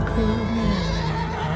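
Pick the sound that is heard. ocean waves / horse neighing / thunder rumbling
horse neighing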